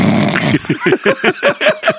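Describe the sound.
A person imitates their own loud snore: a harsh, rasping inhale followed by a quick run of six rhythmic, guttural snorts, with no other talking.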